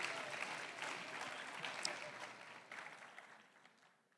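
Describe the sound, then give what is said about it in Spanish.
An audience at a bilingual Spanish-English church service claps for Jesus in a dense, sustained burst of applause that holds steady before thinning out and fading toward the end, with a few scattered voices mixed in. “Ahead and give Jesus a round of applause.”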